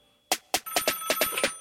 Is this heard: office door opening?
no